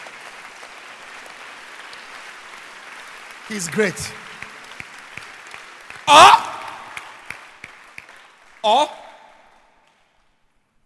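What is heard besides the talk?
audience clapping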